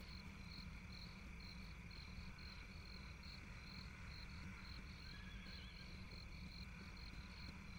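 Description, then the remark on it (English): Crickets chirp at night in a steady, continuous pulsing trill, soft, over a low background rumble with no voices. “As she stealthily walks up a gravel path, the music grows fainter and only the sound of crickets remain.”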